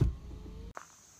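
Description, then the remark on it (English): A car's power window closes as the car is parked: a low motor hum with a faint whine runs for most of a second, then cuts off abruptly and ends in a soft thunk, fairly quiet, with no talking. “So I'm gonna park the car, the window's up.”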